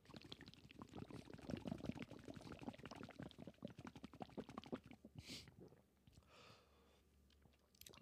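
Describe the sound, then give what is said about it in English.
Wet gulping and slurping as a second concrete mixer shot, a thick curdling cocktail, is drunk down in about five seconds, followed by a couple of sharp exhaled breaths and quiet room noise. “All right, ladies and gentlemen, we're going for the second concrete mixer.”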